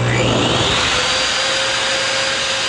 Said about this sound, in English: It's the hand dryer.